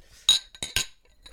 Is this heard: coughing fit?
no